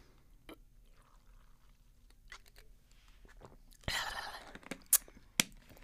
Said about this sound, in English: I've also, moving on from Gabby Hanna before I just like explode, I like this tea and I'm like sipping on it because why the hell not, right?